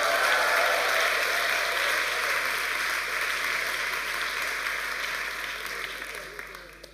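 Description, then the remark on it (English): Steady, dense applause from an audience, a crackling wash of many hands clapping at once that holds strong for several seconds and then gradually thins and fades away. “No, if you're going to clap, wait till you hear this.”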